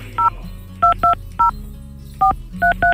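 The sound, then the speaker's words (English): Seven touch-tone telephone keypad beeps as a phone number is dialed to call someone, in short bursts with uneven pauses between them, heard clearly over a low steady hum with no one talking. “let's get Peter on the phone. Okay. Okay, can you hear that?”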